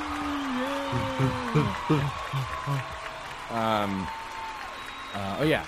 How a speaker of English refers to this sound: Let's wait for the round of applause.